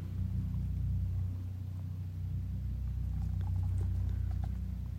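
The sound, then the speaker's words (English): Deep, sustained whale-like rumbling and booming from the ice of Lake Superior (Gitchigami) fills the background, steady and resonant, with faint scattered pings and ticks appearing higher up toward the end. No one speaks. “Big whale-like songs coming from Gitchigami.”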